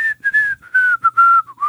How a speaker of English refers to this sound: And believe it or not, I actually figured out how to whistle. I'm not going to tell you how, but I'm dead serious. I'm dead serious. I can whistle. I can go...